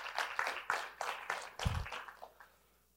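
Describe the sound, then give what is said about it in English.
A round of applause from a small group for Bespoke TV and its partnership with Success in Your City: a steady patter of many hands clapping that thins out and fades to quiet within a few seconds, with no one talking. “So let's give a round of applause for Bespoke and the partnership with Success in Your City.”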